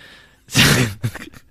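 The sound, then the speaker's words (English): A big yawn: a loud, breathy rush of air swells for about half a second, then tapers into a few softer, voiced exhalations. No one speaks. “A big, lengthy yawn.”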